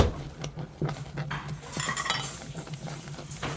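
A wooden spoon stirs thick porridge in a pot, making repeated soft scrapes and light knocks against the sides over a steady low hum, with no voices.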